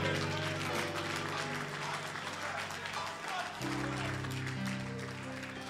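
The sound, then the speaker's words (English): An audience claps for the Lord Jesus during a sermon, steadily and loudly for several seconds, a dense continuous patter of many hands, with sustained music chords playing underneath that shift midway through. “Clap for the Lord Jesus.”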